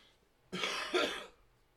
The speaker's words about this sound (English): Apologize for that cough. Probably edit that out later.